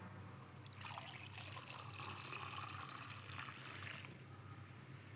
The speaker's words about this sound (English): he took some wine, and he blessed it, and he poured it out.